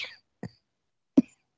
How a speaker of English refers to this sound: Sorry, every time I talk, I start coughing.